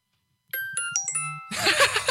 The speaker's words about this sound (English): I think it's called keys or keyboard or something like that, but it's like ding ding. It's like really short.